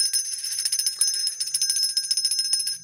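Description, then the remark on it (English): A large hand bell is shaken rapidly and continuously, its bright metallic clanging ringing out loud for the whole stretch, with no voices. “now it's time to ring the bell”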